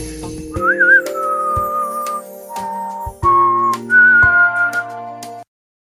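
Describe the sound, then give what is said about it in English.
A loud whistled melody of long held notes stepping between pitches, over steady low backing tones with a few sharp percussive hits, stopping abruptly near the end. “Hope that whistle didn't fucking blow your ears out.”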